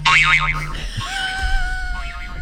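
A cartoon boing sound effect rings out loudly, its pitch wobbling rapidly up and down at first, then settling into a steadier sliding tone that fades over about two seconds.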